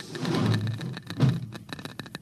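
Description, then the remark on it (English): A Geiger counter in a cabin crackles with rapid, irregular sharp clicks over a low rumbling background, the clicks standing out more distinctly and sparsely in the second half. “Listen to that counter. Strongest over here.”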